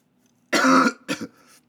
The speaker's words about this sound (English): Sorry for coughing. I'm sniffing. I'm probably, my mouth is mad dry.